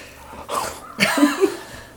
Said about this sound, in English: And that heavy breathing you hear in the background is ….